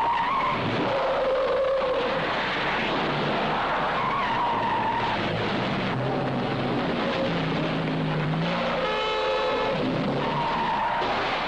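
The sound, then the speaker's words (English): A Fiat 124 driven in stunts by stunt driver Remy Julien: tires squeal and skid repeatedly over a loud, continuous roar of engine noise, with shrill high-pitched screeches rising and falling throughout. No one speaks. “Yet in the more than 100 films Remy Julien has made, he's done more stunts in Fiats than in any other car.”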